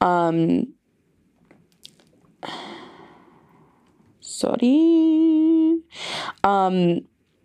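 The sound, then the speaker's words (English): Soft swallowing and wet mouth noises as someone gulps water during a quiet stretch, followed by a long, loud, satisfied vocal exhale and brief voiced sounds. “I'm going to take a water break. Please give me 1 second.”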